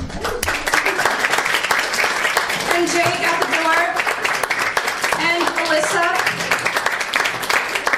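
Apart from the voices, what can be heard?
audience applause and clapping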